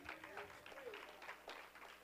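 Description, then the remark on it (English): An audience claps their hands in a steady, scattered burst of applause, with voices calling out over the clapping. “Can you clap your hands?”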